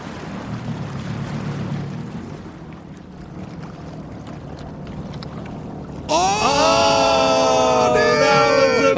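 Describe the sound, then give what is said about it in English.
Rushing water and a low engine rumble, then a loud jet ski engine on Shaver Lake revs up with a high whining tone that rises and holds steady. No one speaks. “You're shredding the gnar so hard. I want to move in on one of those. I want to live on a jet ski.”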